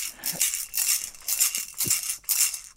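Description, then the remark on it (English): Sleigh bells jingle in a steady run of shaken bursts, bright and high-pitched, rising and falling about four times with no voices over them. “Obviously, sleigh bells.”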